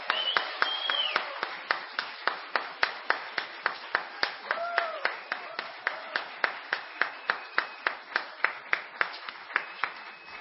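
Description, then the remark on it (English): An audience at an evening of performances during a feast claps for the sound technician in a steady, even rhythm, around three claps per second for ten seconds, with a few brief whoops and voices rising above the beat. “I wonder as well, brethren, if we could have a rousing round of applause for our sound technician who has worked tirelessly all through the feast.”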